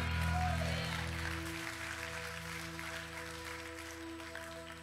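An audience gives God a hand clap of praise, a dense, steady wash of applause over a sustained low organ-like hum, the clapping strongest at first and then easing slightly while continuing throughout.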